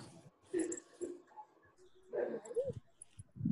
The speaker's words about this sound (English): Okay. Now the bulldog will talk. Hold on.